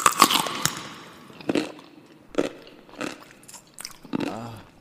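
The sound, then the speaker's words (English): A loud crunchy bite into a pickle taken out of a jar, followed by several wet, squelching chews in an uneven rhythm, each a short burst of crackling noise with quieter pauses between. “The pickle out the jar and put them right here and then I'm going to eat them for you.”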